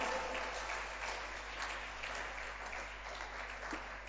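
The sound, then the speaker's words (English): An audience at a conference applauds steadily, a dense wash of many hands clapping at once with no pauses, sustained at an even level throughout. “Or you can clap better.”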